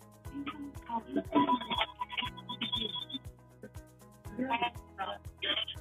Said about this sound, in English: I thought I turned off the phone in my office.